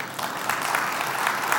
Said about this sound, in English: Yeah, if you want to clap, go ahead.